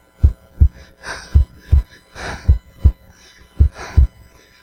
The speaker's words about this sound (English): Until that third day, and fear gripped the hearts of every demon, every imp, because all of a sudden they heard that heartbeat again and they realized that it was not over.